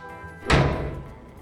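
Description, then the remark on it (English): A back door swings shut with a single solid, fairly loud thud, its boom fading over about a second with no voices present. “We're taking the back door out. This way.”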